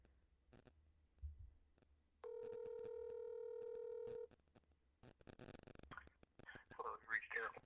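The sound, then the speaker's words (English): A single two-second burst of phone ringback tone, steady and fairly loud, while a call is placed to an American number in Virginia, surrounded by clicks and handling noise, then muffled voices afterward. “I'm going to edit all this ringing out and everything, but.”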